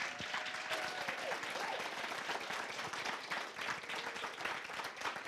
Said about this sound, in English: Can we give another round of applause for David Murrah?